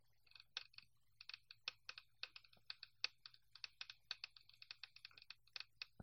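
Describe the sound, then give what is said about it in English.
A dice-rolling sound effect from a dice app on an iPhone: a rapid, irregular clatter of small hard clicks, like dice tumbling and bouncing, continuing steadily for several seconds at a fairly quiet level with no one talking. “An accurate representation of a dice bouncing around inside an iPhone.”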